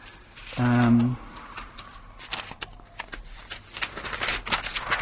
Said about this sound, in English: Have you spotted anything in the papers? No, I'm kind of just having a flick through the news of the world.